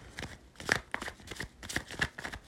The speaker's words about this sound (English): Bottom of the deck, we have the Four of Swords. Watch out for burnout as I continuously shuffle.